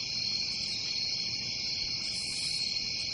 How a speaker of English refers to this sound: If you can hear crickets chirping, no one else is talking or clapping or whatever.